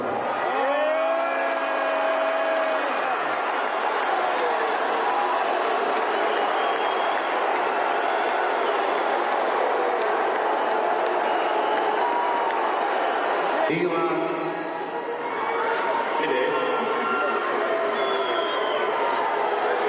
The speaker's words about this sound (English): It's a remarkable video of Elon getting up on stage, getting booed, not knowing at all how to handle it, kind of like pleading with Chappelle to do something.